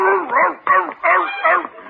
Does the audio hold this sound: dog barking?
yes